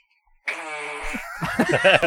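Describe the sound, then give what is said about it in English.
A drawn-out, buzzing fart sound, played from a video, breaks into a quick string of sputtering bursts at the end. Fairly loud, with no talking over it. “You're trying to find that video. I found it. … farting.”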